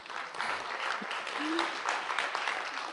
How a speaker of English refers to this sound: Can we welcome him with a hand clap?